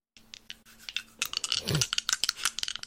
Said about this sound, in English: Your dice are so loud.